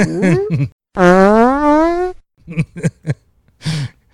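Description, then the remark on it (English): A loud string of fart sound effects: a couple of quick sputtering toots, then a long, drawn-out one rising in pitch, followed by several short popping bursts. “I am going to insert fart sounds, the ones that made me laugh so hard before, because you used gas twice.”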